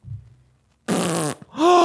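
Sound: fart sound effect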